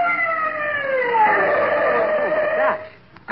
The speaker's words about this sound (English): It's an ambulance. Stopping here.